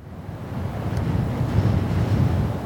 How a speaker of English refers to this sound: One problem with this, it was a rainy, drizzly day in Scotland. I've got a sound effect for this.